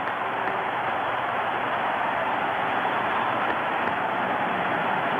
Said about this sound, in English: The crowd is up. As you would expect, a standing ovation. His teammates are there to greet him. A three-run blast by Henry Aaron has tied the great Babe Ruth.